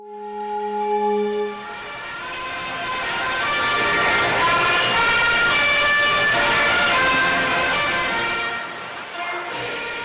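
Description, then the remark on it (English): A large crowd celebrating May Day 2009 around President Fidel Castro in Havana's Plaza of the Revolution, Cuba: a loud, continuous roar of many voices layered with sustained, wavering horn-like tones, opening with a couple of steady low notes before the swell takes over. “The celebration you just heard took place on May Day 2009, when a sea of people gathered around President Fidel Castro in Havana's Plaza of the Revolution.”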